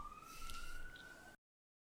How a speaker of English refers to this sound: There's a siren going by my window and I'm going to get a cup of tea.